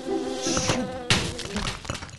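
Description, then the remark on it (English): A bee buzzes steadily for a couple of seconds, its drone wavering in pitch, with a sudden sharp clatter cutting in partway through. “Bee. Fucking Epsler bee. Get it out.”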